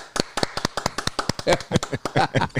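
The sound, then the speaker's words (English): Soft, polite golf clapping: a steady run of light, crisp claps at an even pace, with a faint voice murmuring briefly underneath toward the end. “The golfers clap. Golfers clap.”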